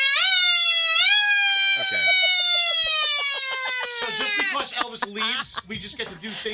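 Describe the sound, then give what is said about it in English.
A voice imitates an emergency siren, a loud wavering wail that rises twice and then slowly slides downward before breaking off into some talking. “Do the siren.”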